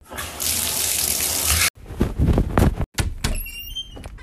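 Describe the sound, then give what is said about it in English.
A steady rush of running shower water hisses for a couple of seconds, then cuts off, followed by clunks, knocks and a door-like thud with no one speaking. “So, yeah, I'm going to hop in the shower, and we're going to start our Phillies journey, and we're going to just hop into this episode.”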